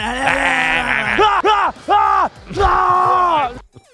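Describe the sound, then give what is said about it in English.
Quarterback Mahomes yells loudly and hoarsely while running out of the tunnel, a long strained shout followed by several short, rising-and-falling bellows in quick succession, with a faint murmur of background noise. “Brady inspired Mahomes to yell?”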